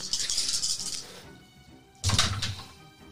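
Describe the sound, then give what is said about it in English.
Dice clatter and rattle across a surface in two bursts during a combat roll in a tabletop game, a longer bright rolling rattle followed by a short pause and then a second sharp, noisy tumble. “So make your combat roll.”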